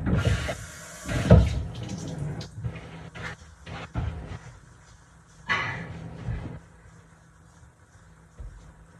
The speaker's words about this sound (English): Doing dishes and everything, just getting everything cleaned up.